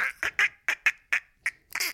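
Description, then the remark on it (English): A person imitates a duck in a Donald Duck style with a rapid series of about eight short, nasal quacks made with air squeezed from the cheek, loud, with no talking. “My dad used to be able to do a great thing with his cheek where he'd put, you'd put air in your cheek, Oh, it's a Donald Duck situation. But it sounds like a dolphin.”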